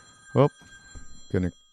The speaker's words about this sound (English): Shut that off. Gee, they tell you to shut your phone off? God, you should have reminded me.